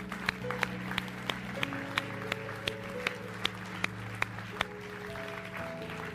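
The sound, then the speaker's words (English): An audience gives the Lord a hand clap in a steady, even rhythm, sharp hand claps landing every third of a second over a sustained organ-like chord that shifts pitch midway. “Can you just give the Lord a hand clap for that?”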